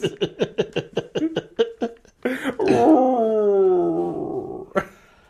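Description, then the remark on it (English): A dog named Greg lets out a quick run of rhythmic yips that builds into a long, drawn-out howl, slowly falling in pitch. Fairly loud, with no talking. “He's singing.”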